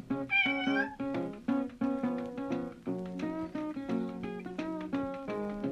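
A cat lets out a loud meow near the start, and sustained tonal, music-like notes carry on steadily afterward. No one speaks.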